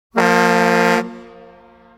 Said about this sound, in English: I got to blow that horn. I got to.